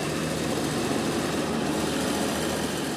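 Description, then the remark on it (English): A road grader's heavy diesel engine runs steadily with a deep, continuous rumble and a rough mechanical drone as it levels a 2-lane highway in central Laos near a major tributary of the Mekong River, part of the Nam Thum 2 dam project; even, loud level throughout, no voices. “In central Laos, a road grader levels a 2-lane highway near a major tributary of the Mekong River.”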